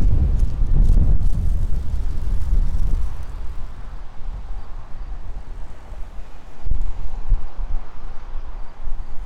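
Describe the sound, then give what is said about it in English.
Strong wind buffets the microphone outdoors on a street, a loud, rumbling low roar with heavy gusts at the start and another surge near the end, no talking. “I'm just a guy out here on the street in the wind with a big old sign and screaming and yelling on the video because it's so windy.”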